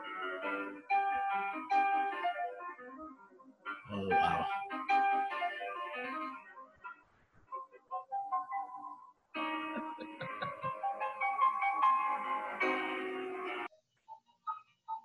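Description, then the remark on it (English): A thin, tinny melody from a real piano plays as if over a phone line, with flowing runs of notes and chords, a couple of brief pauses, and a short exclamation from a voice. “Sounds like a toy piano on the phone. Yeah. It's not, though. It's a real one.”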